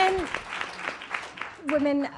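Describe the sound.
A brief burst of audience applause at a talk, applauding the point that women legislators work across party lines, a steady crackle of many hands clapping, with a couple of short raised voices or whoops rising over it near the start and end.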